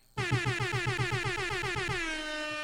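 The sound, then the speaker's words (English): A loud air horn sound effect blares in rapid stuttering bursts, about a dozen quick pulses, then holds as one sustained blast that fades slightly at the end. No voices. “It's cracking with you, air horn time.”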